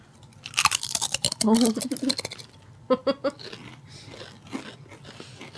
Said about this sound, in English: And then, all right, so now we have our HEB brand chips. Let's go. Let's get a crunch.